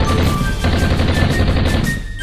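Sustained, rapid machine gun fire from an American plane diving on a supposed hand grenade factory, fired at people on the ground, rattles on without pause for a couple of seconds, loud and dense, with rumbling low end and sharp crackling bursts on top. No one speaks.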